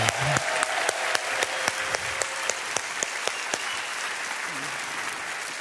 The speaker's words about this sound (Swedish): En applåd till för